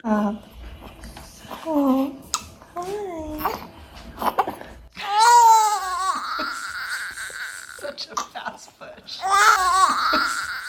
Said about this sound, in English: you're holding the baby and we're hearing like these newborn cries.